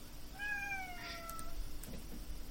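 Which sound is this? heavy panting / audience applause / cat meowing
cat meowing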